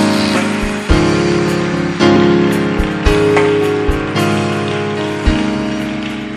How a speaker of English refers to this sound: I appreciate the Lord with a hand clap.